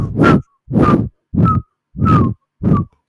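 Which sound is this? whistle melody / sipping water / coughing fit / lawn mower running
whistle melody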